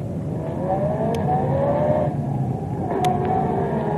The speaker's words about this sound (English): That car that just passed us. It's disappeared. Maybe it turned, bend in road. But the road is as straight as a die.